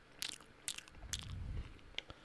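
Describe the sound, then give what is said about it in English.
A dog crunches and chews treats in sharp, bright bursts, recorded with the microphone turned up high, about four distinct bites with a soft low rumble of mastication in between, no voices. “They'll feed their dogs treats and they'll have the microphone turned up real high so you can hear like every”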